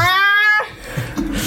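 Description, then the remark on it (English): A woman lets out one drawn-out, cat-like meow, loud, for about half a second. Quieter murmuring and shuffling follow. “She sounds like a cat.”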